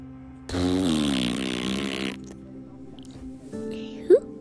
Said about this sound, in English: Yep. The Coco host farted.